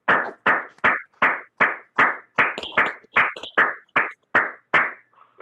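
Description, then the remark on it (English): Applause for Ansonia's 21st football title comes as a steady series of about thirteen loud, sharp claps, evenly spaced at roughly two to three per second, with no talking over them. “Let's have a round of applause for the accomplishments of the team's Ansonia's 21st football title.”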